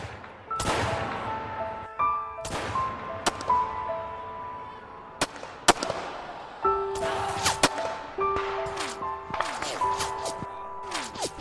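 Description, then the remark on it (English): Right after a bomb explosion, sharp, loud bangs of gunfire crack out irregularly, some in quick bursts, over a continuous chaotic backdrop of wailing cries, moaning and screaming voices. “The moment the bomb fell, according to all accounts, there was a brief moment of eerie calm, this massive explosion and a moment of silence, which was then immediately punctuated by the sound of screaming, moaning, and immediate gunfire.”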